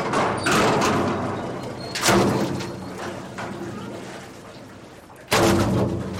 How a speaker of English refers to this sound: The fishing vessel Sea Hound docks at the Chatham Fish Pier on Cape Cod, Massachusetts, to unload her catch as a huge steel bucket swings down onto her deck.